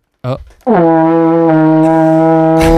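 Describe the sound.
A brief sputter, then a loud, long, buzzy fart noise made into a microphone, holding one low, steady pitch like a trombone note for about two seconds before cutting off.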